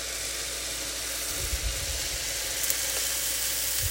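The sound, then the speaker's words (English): A steady hiss of cooking spray on a hot waffle iron, sizzling continuously for a few seconds with faint low thumps underneath and no talking. “First, let's spray the waffle iron.”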